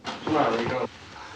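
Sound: sneeze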